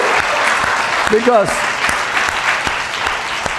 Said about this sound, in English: It's a good time to clap, don't you think? Yeah, yeah.